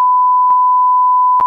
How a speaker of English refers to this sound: We'll just beep it.